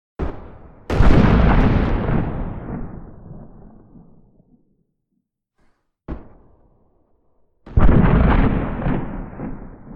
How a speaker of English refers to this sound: You could use a very crisp explosion sound like this for when it's close to the player, and a very rumbly explosion like this for when the explosion is far away from the player. I did this in my game. Take a listen.